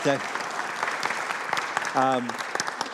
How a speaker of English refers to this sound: Yeah, give her a big round of applause. Welcome back, baby.